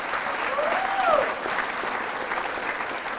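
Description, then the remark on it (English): A crowd applauds the voters of California for winning Prop 8, steadily for about three seconds. A dense wash of clapping holds at an even level, with a brief whistle or voice rising faintly through it near the start. “Could we have a round of applause for the voters of California?”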